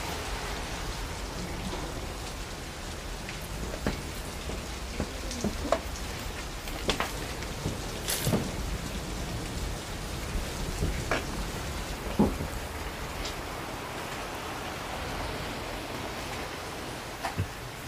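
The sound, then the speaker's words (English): Steady rain pours down in a dense, continuous hiss, with scattered sharper drops and splashes popping through now and then. No one speaks. “Oh, I don't think so, it's raining.”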